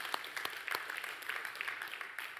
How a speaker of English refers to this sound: Let's give Patrick a big round of applause for his first day on the sound desk.